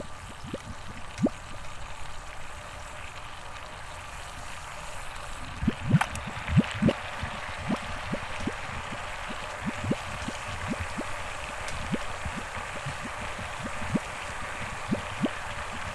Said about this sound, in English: And the water's weird. It's like soda bubbling or something.